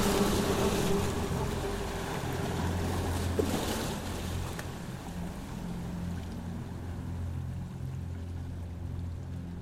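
Continuous rushing water with waves sloshing and churning, a steady dense wash of noise with low rumbling undertones, constant throughout, no voices.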